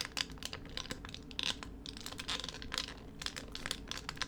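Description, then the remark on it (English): Crinkly plastic rustling from a squeezed dog toy belonging to Howie's dog, a dense run of sharp, bright crackles and crunches that come in uneven bursts for several seconds, with no voices. “This is Howie's dog toy.”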